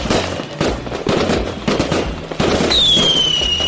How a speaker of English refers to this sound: I will light it. I'm going to light the fireworks.